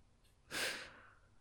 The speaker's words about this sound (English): Okay. That was kind of like breathing? Yeah, it was like a weird transitional breathing noise. And I still use it today.